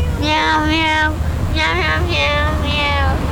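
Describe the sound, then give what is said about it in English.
A person mimics a cat with a string of drawn-out, sing-song meows, about four or five in quick succession, loud over a steady low rumble. “Meow, meow, meow. Meow, meow, meow, meow.”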